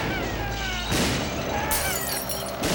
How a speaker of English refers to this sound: Here's my favorite effect, the $1 explosion. That's just a piece of flash paper I held in front of the lens. You know, it was a lot cheaper.